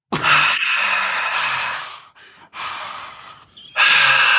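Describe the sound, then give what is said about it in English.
A voice attempts a crowd cheer but produces only loud, breathy exhalations, several heavy mouth-breath bursts in a row, noisy, with no words spoken. “It's just like you're breathing through your mouth heavy.”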